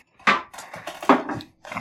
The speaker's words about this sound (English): This chair's louder than the air conditioner.